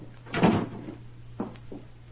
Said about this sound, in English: Close the door, Tom.